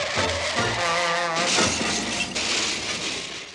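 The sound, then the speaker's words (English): A cartoon car crash sound effect: a wavering, pitched skid-like tone slides for about a second, then gives way to loud clattering smashes and shattering glass that trail off. “Insert cartoon car crash sound effect here.”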